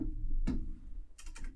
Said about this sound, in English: Also, my apologies for my loud keyboard. You're probably all hearing it.